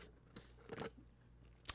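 Ice rattles in a cup of Chick-fil-A Coke as someone takes a sip, in a few short, crunchy bursts, with a louder clatter in the middle and a sharp clink near the end, with no talking.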